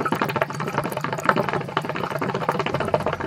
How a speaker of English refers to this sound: The sound quality of this podcast may not be the best. You hear the noise in the background. I'm on a boat. I'm on a ship in the port of Hodeidah.